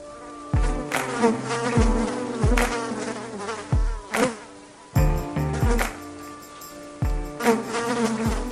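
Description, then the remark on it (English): A dense, whining insect buzz of many mosquitoes hums steadily and loudly, swelling in rhythmic pulses, with deep thumps recurring about once a second and no voices. “This week, we want to sell you hundreds of thousands of mosquitoes.”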